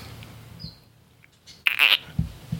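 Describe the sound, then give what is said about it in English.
A Bibron's toadlet gives one short, grating squelch of a call, loud, followed by a couple of soft low thumps in an otherwise quiet background. “Is that the Biberon's? It is.”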